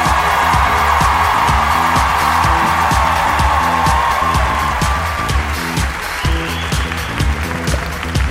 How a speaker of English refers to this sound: So why don't you guys start clapping, get amped